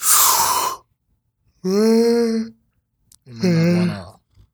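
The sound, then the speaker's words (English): A loud yawn into a microphone: a sharp breathy intake followed by two long, drawn-out groaning vocal stretches with brief pauses between them. “Don't yawn in the mic.”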